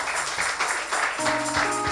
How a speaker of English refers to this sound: Oh, give the Lord a hand. Oh, are you clapping?